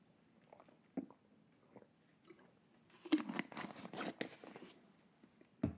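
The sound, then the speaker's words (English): Sipping of water: a few soft mouth clicks, then a louder, noisy stretch of slurping and swallowing lasting over a second, ending with one more sharp click. “That was the water.”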